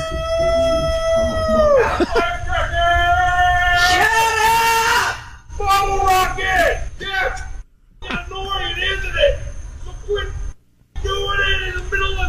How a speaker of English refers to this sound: People living on a Cape Coral canal got an early 4th of July show. It wasn't one you could see, but you could definitely hear it. The dogs were barking and we go outside and this guy is screaming, I mean, so loud.